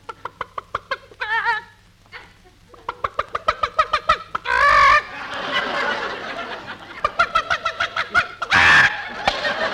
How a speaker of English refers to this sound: We got to feed the chickens. Here, chick, chick, chick, chick, chick, chick, chick, chick, chick, chick, chick. Come on, chick, chick, chick, chick. Here's some corn for you.